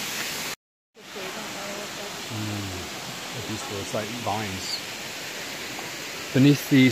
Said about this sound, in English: Beneath the waterfall, there's like a series of little swimming pools, natural pools that have been created by, and I guess like the people actually. These kind of, you know, mounds of stones, almost like little dams.